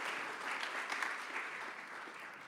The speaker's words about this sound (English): Okay, should we give these two a round of applause?